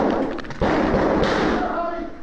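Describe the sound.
A sharp, loud rifle shot cracks out, then a second blast follows a moment later, both booming over a dense wash of noise with faint voice-like sounds underneath.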